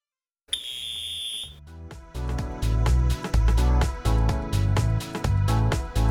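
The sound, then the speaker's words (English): A workout interval timer buzzer marking the end of a four-minute running interval blares once, a loud, steady electronic tone lasting about a second, before upbeat music with a driving beat starts and carries on. No one speaks. “This tune fades out quite quickly here, so keep running right till you hear the buzzer.”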